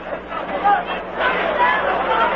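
A steady wash of crowd chatter from a large crowd at an Expos baseball game on a holiday afternoon, many voices blending into a continuous murmur with occasional rises in volume and no single voice standing out.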